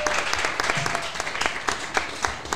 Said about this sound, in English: Let's make a big round of applause for Jester's Palace one more time for hosting the event.